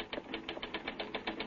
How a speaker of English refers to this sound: Get that typewriter. Huh? Start pounding out a lead. Come on, snap into it.